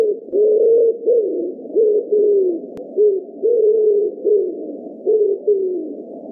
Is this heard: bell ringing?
no